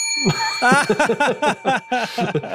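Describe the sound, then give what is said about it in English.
A bell rings at the start and its bright, steady tones hang on throughout, under a loud, choppy run of voices that fills the rest of the moment. “Spoiler alert, that's the only bell in the whole episode.”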